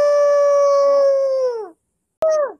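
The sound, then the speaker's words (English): A person imitates a wolf howl: one long, steady, loud note that sags downward at the end, then a short pause and a brief second howl that also drops off. No talking. “Again, we don't generally, like I said, I don't generally bark at my coworkers, but this is a Therian stream, so I may as well give a last goodbye howl.”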